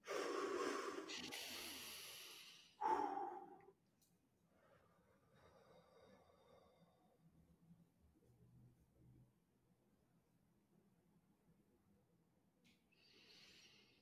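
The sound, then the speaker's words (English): A long, loud, deep breath drawn in for a few seconds, filling the lungs as much as possible, followed by a brief forceful rush of air, then near silence with faint background noise. “So after the count of five, taking a deep breath, filling up your lungs as much as you possibly can.”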